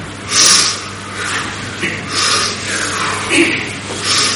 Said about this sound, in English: Close your eyes. And we're going to be breathing in strong, like this. And then you don't have to breathe out strong. You can just let it go like...